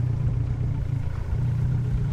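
A potent 115 horsepower outboard motor on a rickety plywood boat idles with a steady, low, rumbling drone while the boat is loaded at the edge of the Shishmaref Inlet, the engine note holding even throughout with faint clattering texture and no voices.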